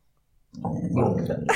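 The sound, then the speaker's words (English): A female dog named Gally growls in a low, rough, continuous rumble that starts abruptly after a short silence and holds steady for about a second, fairly loud. “I don't know why she's growling at me today.”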